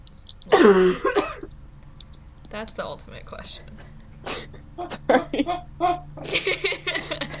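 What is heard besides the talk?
cough with throat clearing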